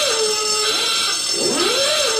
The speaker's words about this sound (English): So the alarm's gone off. My God.